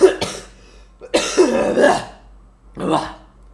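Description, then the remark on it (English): A person coughs in three harsh bursts, the middle one longest and most strained, with short pauses between them and a low hum underneath, after laughing while smoking dried leaves. “I have a cough because you made me laugh as I was smoking”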